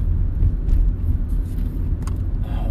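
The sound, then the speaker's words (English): Steady low road rumble from inside a moving car being driven around looking for a hotel, a constant engine and tyre drone filling the cabin with no voices, just the continuous hum of driving. “I don't want to keep driving looking for shit.”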